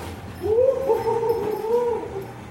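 An old dog, being played with, whimpers in a long, wavering high-pitched whine that rises and falls, with a few short yips mixed in, moderately loud.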